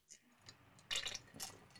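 Quiet sipping sounds: a couple of short, soft wet bursts from someone drinking water, with faint clicks in between and no talking.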